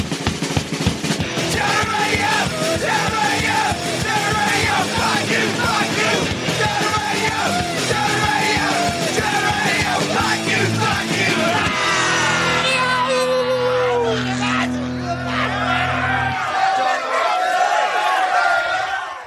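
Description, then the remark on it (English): Loud punk theme song with a chorus of voices screaming and yelling together, the screams done by professional musicians, over driving drums and distorted guitars, the shouting continuing throughout before the music cuts off near the end. “Most of those screams were done by professional musicians”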